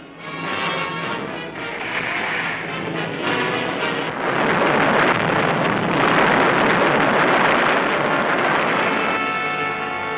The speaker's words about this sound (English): Suddenly, well in advance of the cargo ships, a spotter sights an undersea raider. Depth charges fly out over the ocean. A second volley of high explosives.